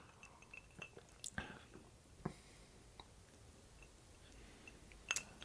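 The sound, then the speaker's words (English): Someone quietly sips a hot cocoa drink, with soft wet mouth clicks and swallowing noises scattered over a few seconds of near silence, and no talking. “Second sip is better than the first.”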